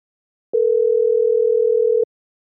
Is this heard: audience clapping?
no